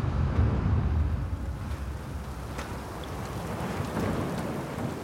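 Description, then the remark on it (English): A heavy storm at sea roars steadily with deep rumbling icy wind and rain, while scattered sharp impacts of hail, snow and sleet patter against the exposed deck of a boat thrown around by huge waves, early morning on the 6th of June. “There's a strong, icy wind, and a mix of snow, sleet, and hail pound the exposed deck.”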